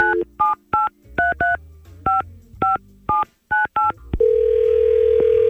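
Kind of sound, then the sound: signal or alarm, telephone dialing tones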